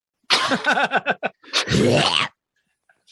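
A dog heaves and retches in a quick series of rising, strained gagging sounds, followed by a longer wet, noisy burst as it throws up, then quiet.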